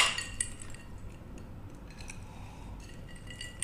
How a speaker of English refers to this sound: if you hear clinking in the glasses, it's because we poured a little bit of a local distillery's whiskey bourbon